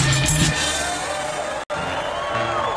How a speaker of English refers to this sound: Ladies and gentlemen, y'all are going to be all horse and sore tomorrow, but thank you so much for clapping and yelling because this next comedian deserves it.